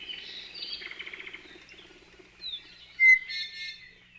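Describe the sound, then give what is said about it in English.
Laysan albatross, also known as the goony bird, calls in a field recording: a rapid chattering series, then a few sharp, higher whistling cries toward the end, against a quiet background with no talking. “Special thanks to the Cornell Lab of Ornithology for today's field recordings of the Laysan albatross, also known as the goony bird.”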